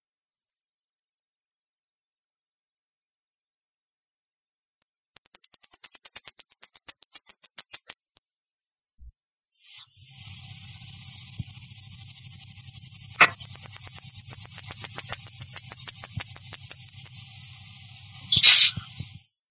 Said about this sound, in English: You are first going to hear the mouse that starts the duet, and then you will hear the second mouse who is finishing the duet. The singing is a very high-pitched whistle. Do not expect it to be like opera or bird song, for that matter.